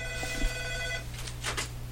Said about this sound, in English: There's the phone. We always add a little, like to add a little color to these podcasts. That's right. Hopefully he doesn't phone back again.